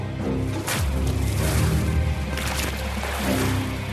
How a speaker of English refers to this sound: What's the water? Is that water? They threw water on us. Yes, yeah, so this was a part of the interrogation.